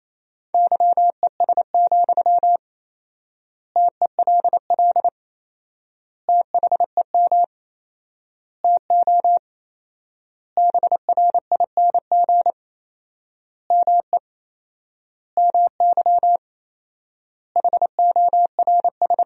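Morse code beeps at 28 words per minute, sending sentences made from the top 500 words with four-times word spacing: a single steady mid-pitched tone keyed in quick dots and dashes, grouped into words with long silent gaps between them. No voices.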